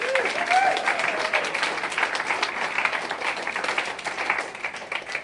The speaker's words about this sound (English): Now, just before we go and break, that is worth a clap, isn't it, actually? Go on.